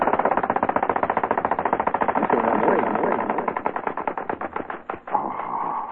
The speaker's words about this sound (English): Little thing. That was my bird. And for those of you who would like one of these groovy little plastic birds that really fly, it's 16 inches across. It's beautiful. It really is pretty.